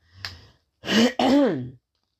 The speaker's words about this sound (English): I'm going to clear my throat.